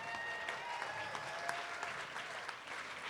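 A steady wash of audience applause, many hands clapping at once in a dense, crackling texture that holds at a fairly even level before easing slightly at the end.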